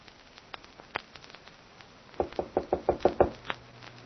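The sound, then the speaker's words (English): A rapid, insistent burst of about eight loud knocks on a door at a manor house, following a few faint scattered taps, with one last knock after a brief pause. No one speaks. “Open the door”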